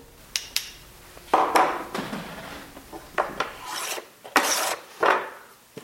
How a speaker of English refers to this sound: Can you hear that? Doesn't that sound beautiful? As Dignan scrapes a handmade plane down a stick of wood he's carving into a violin bow, fiery orange shavings float through the air and coat his workshop near Boston with a fine layer of dust.